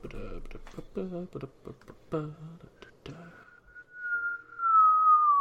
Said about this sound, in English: Please don't whistle into the microphone. Sorry. That doesn't make for good podcasting. Sorry, I didn't even notice I was doing it.